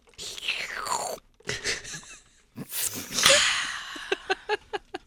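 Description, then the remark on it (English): Sipping from a drink: airy, slurping mouth noises and a brief whistly intake, then a quick run of small, clicky swallows and lip smacks. “I'm going to sip real quick.”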